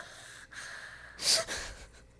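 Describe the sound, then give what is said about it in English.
Airy breathing of a woman falling asleep, with a faint breath, then one loud, deep inhale-exhale that swells and fades, slow and heavy, with no talking. “And I'm gonna have to edit out her deep breathing. As she falls asleep.”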